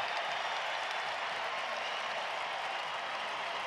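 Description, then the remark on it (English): A basketball arena crowd at a Utah Jazz game cheers and applauds Keontae George's performance in a steady, dense roar of clapping and voices that holds at an even, fairly loud level throughout, with no single voice standing out. “And the crowd loves it.”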